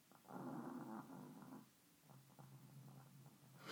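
dog snoring

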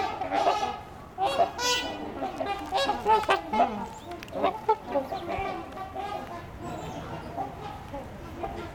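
canada geese honking

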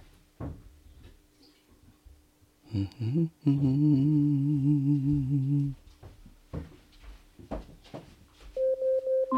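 smart speaker timer alarm

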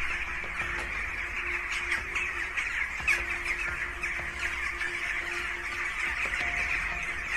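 many birds squawking

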